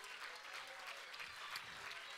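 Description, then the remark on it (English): An audience claps unto the Lord together in a dense, steady wash of applause, many hands blending into continuous bright crackle at an even loudness. “Let's clap unto the Lord.”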